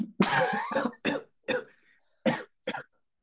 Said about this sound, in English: Starts coughing.